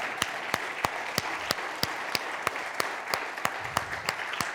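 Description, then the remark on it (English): A church audience gives God a round of applause in a dense, steady wash of clapping, with sharp claps striking in an even rhythm about three times a second throughout. No one speaks. “Take 5 seconds, give God another round of applause for that.”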